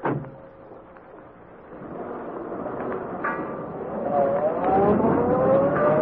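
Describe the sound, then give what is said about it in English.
A car parked beyond a rooming house comes to life with a low rumble, then revs higher and louder as it pulls away toward River Road and accelerates, its whine climbing steadily. No voices. “And they go to car parked beyond rooming house.”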